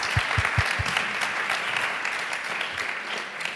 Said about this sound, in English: Feel free to applaud. Yes, don't hold back. Share that love.